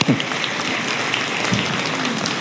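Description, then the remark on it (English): A crowd claps steadily for a friend of the speaker, a dense, even wash of many hands filling the room for a couple of seconds, fairly loud, with faint voices briefly audible underneath. “So can I have a round of applause for my friend here?”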